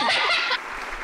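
A quick burst of hand clapping, dense and bright, lasting about half a second before cutting off, with a bit of soft laughter mixed in.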